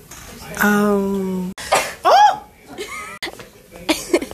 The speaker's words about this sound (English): Bless you. Really? The other way before I sneeze. No, she sneezed.